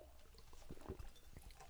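Beer pours into a glass, a soft gurgling splash with a few uneven bursts over a quiet background. No one speaks.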